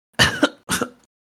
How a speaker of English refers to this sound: He coughs a couple of times.